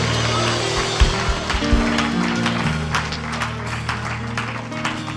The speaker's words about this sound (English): Come on, give him a hand clap and a big shout of praise.